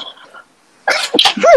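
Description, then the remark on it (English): A single loud sneeze bursts out after a brief quiet pause, preceded by faint background murmur and ending with a rising vocal sound. “Bless you.”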